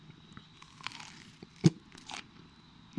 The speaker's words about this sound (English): Be glad that none of you can see the face that was just made at me while this creature crunched her fucking, what are those fucking peas? String beans.